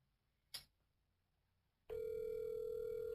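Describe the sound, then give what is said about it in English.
A soft click, a moment of near silence, then a steady electronic telephone ringing tone starts and holds loud and clear over a call line on an outgoing call to a guest in Houston, Texas, with no voices. “You can hear her ringing now, isn't it?”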